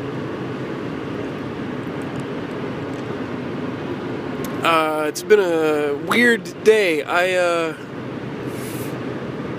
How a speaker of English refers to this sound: is it dangerous recording this podcast while driving a car and by yourself? The answer is yes.